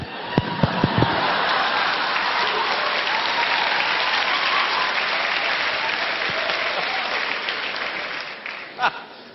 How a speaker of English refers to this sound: Oh, look at these young people clapping.